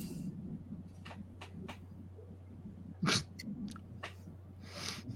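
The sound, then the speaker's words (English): Gulping beer from a bottle: a string of short wet swallows and mouth clicks, with one louder gulp near the middle, over a steady low hum and no talking. “Oh, instead of just like a sip. It's not even comfortable. Just a gulp.”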